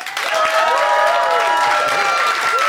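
An audience breaks into loud, sustained applause to vote for one side of an argument, a dense wash of clapping that holds steady throughout, with a few raised voices cheering and whooping over the top.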